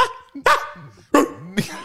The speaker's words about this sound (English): All right, we're adding the dog sound.